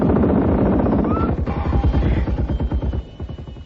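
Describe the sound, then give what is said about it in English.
Loud, rapid machine gun fire from guns on a car rattles in fast, steady bursts over a deep, rumbling engine drone, then thins into a few scattered shots near the end. No one speaks. “That car, it's got guns!”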